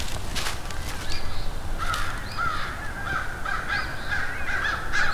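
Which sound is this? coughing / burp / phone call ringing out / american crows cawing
american crows cawing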